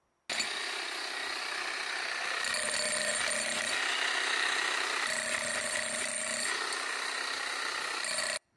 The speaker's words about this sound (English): recently let me borrow a jackhammer, and that's our middle son. And we deconstructed about 6 blocks of concrete close to our house. Because the foundation, these 6 blocks of concrete, were old and worn out